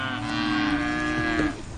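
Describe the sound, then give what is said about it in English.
A cow on a farm in Scotland, a few miles north of the river dividing Scotland and England, lets out one long, drawn-out moo, loud, its low droning call holding steady for over a second before tapering off. No one speaks. “Sally Williams is talking to her cows.”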